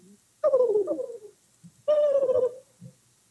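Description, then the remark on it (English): A sloth call: two loud, wavering cries that slide downward in pitch, each lasting under a second, separated by a short pause, with no talking. “There's your sloth sound.”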